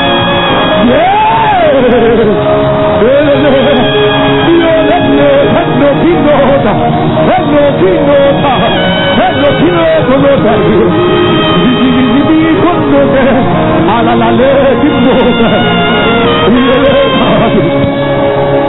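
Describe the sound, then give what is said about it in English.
A church audience shouts and yells loudly all at once during a service, a sustained roar of many raised voices with rising whoops, continuous and dense throughout and overwhelming. “Listen, as we are shouting now, every condition you came here with, we are disappearing.”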